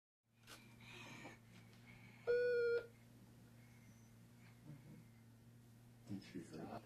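A single steady electronic beep, about half a second long and mid-pitched with a buzzy harmonic edge, rises clearly above a constant low hum and faint background stirrings.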